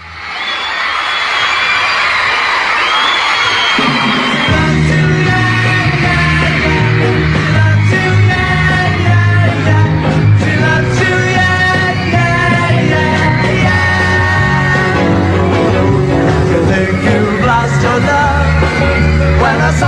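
A crowd screams loudly and continuously, first on its own and then over a band that starts playing a few seconds in, the shrieking never letting up beneath the music, during a band's first televised performance in the U.S.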